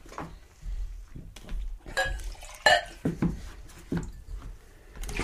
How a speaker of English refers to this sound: Okay, nice healthy rinse, get all that mint out of our glass.